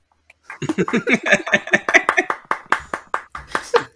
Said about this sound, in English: Stop clapping.